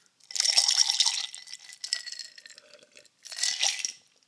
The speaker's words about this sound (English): So the soda water is going to kind of help to open it up a little bit more and give it a little bit of dilution, but also help to really bring out the taste of the mint and all this stuff. So here, let's add a little bit of soda water to it.